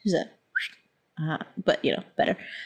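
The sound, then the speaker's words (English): A brief whistle with a quick upward-sliding pitch, heard on its own before a person begins talking. “I just, as a short whistle”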